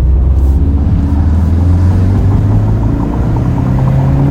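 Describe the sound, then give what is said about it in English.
A car engine hums loud, its low drone rising steadily in pitch as the car accelerates during a test drive, with continuous road rumble and no voices. “She pulls strong. I mean, it's a sounds so good. It's a stout car.”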